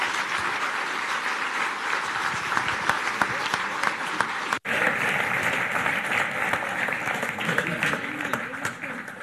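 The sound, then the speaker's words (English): A crowd breaks into sustained applause for people who have just been handed ministry certificates: dense overlapping claps at steady loudness for several seconds, with a brief drop in the middle before the clapping carries on. “But can we give them a round of applause for their hard work?”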